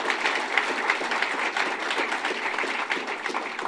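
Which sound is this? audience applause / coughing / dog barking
audience applause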